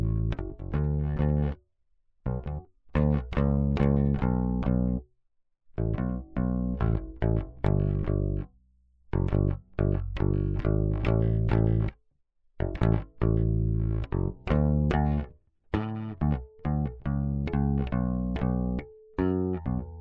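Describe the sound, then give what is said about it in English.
Electric bass played through a vintage 1970s Vox tube amp using its built-in reverb and tremolo: deep, sustained notes in rhythmic phrases broken by brief pauses, fairly loud and with no voices. “I always love an opportunity to make my vintage 70s Vox tube amp with its built-in reverb and tremolo sound like itself, like what it is.”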